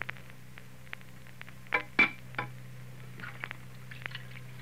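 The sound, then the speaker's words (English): Dishes being washed in the kitchen at Ma's house: a pair of sharp, ringing clinks of crockery stand out among soft scattered clatters and splashy rustles, all over a steady low hum, with no one speaking. “Well, now at Ma's house, out in the kitchen, Faye and Joseph are doing the dishes.”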